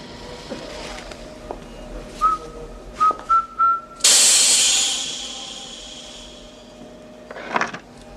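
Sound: person whistling a tune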